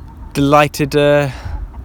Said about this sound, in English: I've chucked some treats down on the ground for the hens, and they are close to me